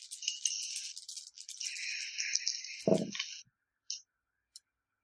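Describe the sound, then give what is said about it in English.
Dice rattle steadily for about three seconds, followed by a dull thud as they land, then two sharp clicks as they settle; the roll comes up +2. No one speaks. “Okay, I've got a +2 on the dice, and I've got a 1 covert, so that's a 3.”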